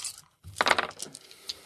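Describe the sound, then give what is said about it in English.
A brief clattering rattle of dice, rolled for an inspire roll, tumbling across a hard surface, a quick burst of clicks that settles into a few lighter taps. No one speaks. “All right, roll inspire.”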